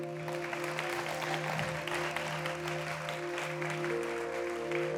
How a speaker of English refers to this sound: Big round of applause.